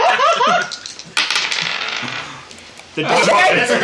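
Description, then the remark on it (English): A quick clattering rattle of dice tumbling across a hard table surface, fairly loud, with people talking just before and right after the roll. “Hell with it, I'm rolling for.”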